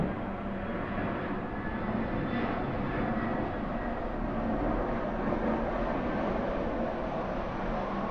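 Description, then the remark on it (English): A steady, loud roar of a jet aircraft passing overhead, a broad rumbling wash of engine noise that holds constant throughout with no voices. “The jet is our meditation bell, right? Bringing us back to the body.”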